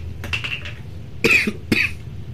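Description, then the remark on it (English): A person coughs several times: a quicker, lighter burst followed by two sharper, louder coughs, set against a low steady background hum with no talking. “Stop you coughing.”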